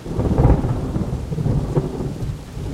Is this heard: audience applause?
no